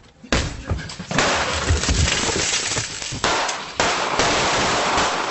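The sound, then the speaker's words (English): Several loud, sharp gunshots crack out at uneven intervals as a homeowner fires through an outer glass door at home invaders. Each shot is followed by a harsh crash of breaking glass and a lingering, noisy clatter. The sound is dominant, with no talking. “One invader hits the deck as the homeowner fires through the outer glass door.”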